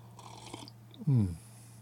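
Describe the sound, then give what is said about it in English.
A soft, slurping deep sip of hot tea in the morning, followed by a brief, loud, throaty exhale that falls in pitch, all over a steady low electrical hum. “Sorry, needed a nice deep sip of tea there.”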